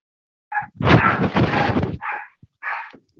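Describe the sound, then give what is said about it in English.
A small dog barks and yaps in a quick burst of several high-pitched barks, loud, with a couple of shorter yips trailing after, in the background of a phone call. “Got a little dog barking right now.”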